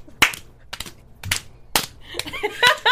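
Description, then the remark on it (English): Hand clapping, about six sharp, loud claps spaced roughly half a second apart in a loose, unhurried rhythm, with faint voices murmuring toward the end. “Actually, it's smart, though, because if you're clapping a lot, my palms always get tired.”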